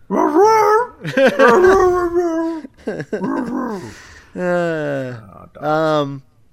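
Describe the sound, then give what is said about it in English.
A dog barks and yelps in a loud run of bursts, then lets out two drawn-out, wavering howls with brief pauses between them. “He presses a recording and then just starts barking.”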